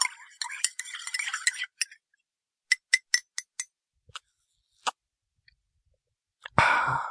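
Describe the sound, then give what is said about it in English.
Someone sips tea from a cup: a breathy, noisy slurp, then a string of soft, sharp clicks and taps like a cup being handled, ending in a louder, airy exhale. “Just having a sip of tea.”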